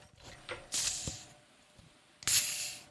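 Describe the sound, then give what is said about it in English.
Two Coronita Extra mini beer bottles are cracked open one after the other, each with a sharp pop and a bright burst of fizzing hiss that trails off, with a few small clinks in between. “Well, we're going to crack one open.”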